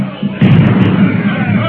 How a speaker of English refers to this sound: There go a dozen of them into eternity. That grape shot sure did the trick.